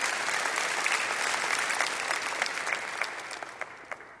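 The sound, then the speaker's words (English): An audience applauds steadily, a dense wash of many hands clapping at an even level before gradually thinning out, with a few individual claps standing out near the end. “You can applaud it.”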